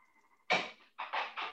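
A door slams hard with a broad, booming bang that rings out briefly, followed quickly by three more rapid bangs, all heard after a faint steady hum.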